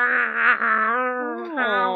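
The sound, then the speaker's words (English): A cat named Horman lets out one long, drawn-out meow that holds steady and strong, then bends down and back up in pitch near the end. No one speaks over it. “What's up, kitty purr?”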